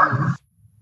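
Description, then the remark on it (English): A single sharp dog bark from a dog wanting to play rings out, loud and abrupt, then cuts off into near silence with only a faint low rumble remaining. “The dog is definitely wanting to play.”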